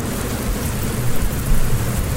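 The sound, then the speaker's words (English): Steady rain hisses across the whole clip, with a low, continuous rumble of thunder underneath. No one speaks, and the downpour holds at a moderate, even loudness throughout. “You notice that the rain is beginning to let up just ever so slightly.”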